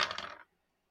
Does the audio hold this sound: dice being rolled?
yes